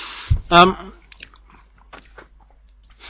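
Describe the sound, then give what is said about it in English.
Munching on a crust of cream: a soft crunching bite and a brief voiced hum, followed by quieter, irregular chewing clicks and smacks. “I'm munching a crust of cream now, again, because I'm absolutely famished.”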